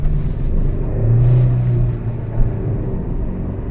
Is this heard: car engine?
yes